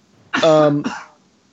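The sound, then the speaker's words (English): A loud cough with a strained, voiced edge, followed quickly by a shorter second hack, then quiet. No words are spoken. “Oh, excuse me. Hold on. I'm about to cough. Yes, the cough.”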